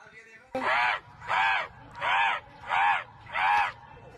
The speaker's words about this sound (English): This is a video of a man who could call crows at any time. He could what? Call crows. Shut up. He could summon crows.